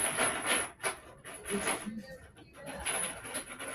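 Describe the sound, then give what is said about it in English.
Chains rattled on cue during a staged scene: they clink in uneven bursts, a bright metallic jangle that rises and falls, pauses briefly, then shakes again at moderate loudness. “Start again the chains. Okay, do the chains.”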